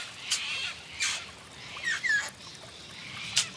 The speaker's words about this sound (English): And this satin bowerbird is definitely showing off. It seems he is standing out to the female satin bowerbird, who is watching his display.